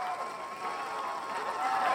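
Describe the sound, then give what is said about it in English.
A crowd cheers in a dense, steady roar of many voices, with a few higher shouts rising above it for about two seconds. “That's why you got to cheer there.”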